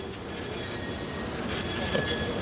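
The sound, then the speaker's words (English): A San Francisco cable car rolling past, a steady rumbling clatter of rail noise with a thin, high metallic whine running through it, continuous for the whole moment with no voices. “Oh yeah, good cable car sounds. That's your cable car, San Francisco.”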